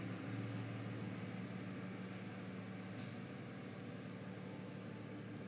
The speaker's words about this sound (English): I'm gonna wait for this truck to get going.